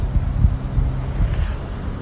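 Flowing river water rushes steadily, a continuous low, churning rumble with a faint airy hiss on top and no voices.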